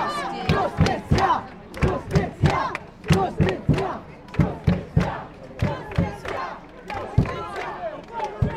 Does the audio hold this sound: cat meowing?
no